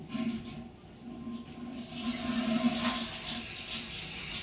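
A toilet flushes somewhere nearby, its rushing water swelling in the middle and then easing off, fairly faint, over a steady low hum with no talking.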